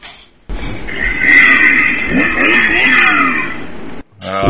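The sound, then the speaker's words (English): A chainsaw engine revs loudly, a harsh buzzing roar that holds for about three and a half seconds, its pitch surging and dipping before cutting off abruptly. “Is that a motorcycle or something? No, it's a chainsaw.”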